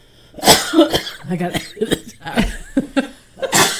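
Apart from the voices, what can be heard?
coughing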